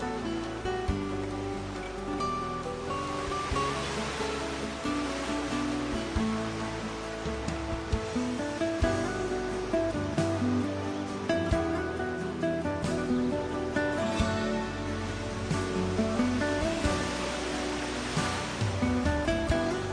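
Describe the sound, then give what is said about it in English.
Steady ocean surf washes continuously beneath soft, sustained musical tones, a gentle wash of water with no distinct breaks, and no one speaking. “Then try and imagine that there is a force or an energy that joins us all together, and it is this water.”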